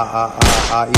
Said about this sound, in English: With my gunshot.